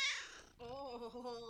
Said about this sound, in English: my cat plopped down on my lap and then literally just put her face into the microphone and went